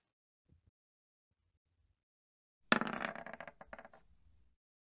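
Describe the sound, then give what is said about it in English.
Dice clatter across a hard surface in a sudden burst, rattling and bouncing for about two seconds before settling, with near silence before it. “And I will roll some dice in a minute when I finally stop having typos.”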